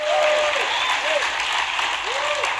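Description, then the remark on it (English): A steady patter of polite audience golf-clap applause fills a gym during a church gathering for a few seconds, dense and even throughout, with faint voices rising briefly underneath. “Thank you for the golf clap.”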